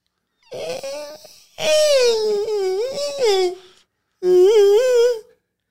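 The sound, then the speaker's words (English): A voice imitates a Jay Leno fart with three wavering, squeaky bursts, the middle one longest, each a buzzy, whiny tone that wobbles in pitch, with short pauses between and no other talk. “And this is what his fart sounds like.”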